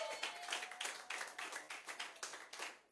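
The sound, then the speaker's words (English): An audience claps together as a clap offering to the Lord, in a dense, rapid burst of applause, crisp overlapping claps keeping a rough steady rhythm for a few seconds, fairly soft overall, with no one speaking. “If you believe it, give the Lord a mighty clap offering.”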